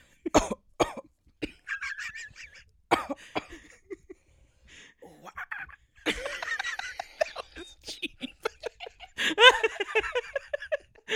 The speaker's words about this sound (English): Cough. Yeah, it's still there. It just won't go away. And I kind of have a cough. You could hear it in my throat.